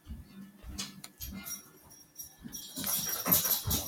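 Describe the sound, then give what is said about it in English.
A male Australian Shepherd Border Collie mix dog whimpers in a few short, breathy whines, followed by louder rustling and jangling movement noise near the end. “My dog, he is loud.”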